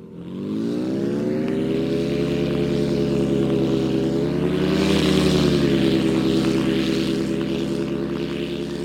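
A German Tiger Eurocopter attack helicopter passes overhead, its steady droning rotor and engine growing louder toward the middle before easing off slightly, a continuous loud rumble with no voices.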